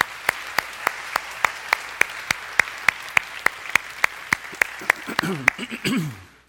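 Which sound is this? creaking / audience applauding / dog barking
audience applauding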